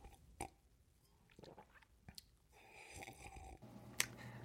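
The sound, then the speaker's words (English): Someone sips a drink: soft slurping and wet mouth clicks, a few sharp swallow-like pops spread over a few seconds, with no talking. “Have a little sip here.”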